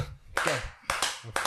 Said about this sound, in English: No, no golf claps.